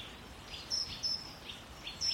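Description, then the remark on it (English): Woodland birds chirp in the sun in an old woodland: several short, high-pitched chirps ring out at irregular intervals over a soft, steady outdoor hush, fairly quiet, with no voices. “It's a really lovely spot here because the sun, I think, is bringing any sort of insect life out and all the birds are coming to.”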